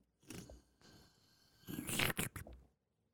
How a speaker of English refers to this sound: And that's the motherfucking sound effect for the leans. We got the motherfucking lean drinking sound effect. Play that shit again.